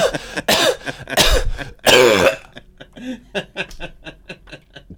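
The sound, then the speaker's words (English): A voice imitates a woman coughing during Iron Man's death scene in a film: several loud, harsh bursts at first, then a string of quicker, softer, muffled coughs as she tries to choke them back and coughs repeatedly into her sweater, alone. “And now she's coughing into her... and now she's coughing repeatedly into her sweater.”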